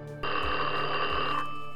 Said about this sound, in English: But then, the phone rang.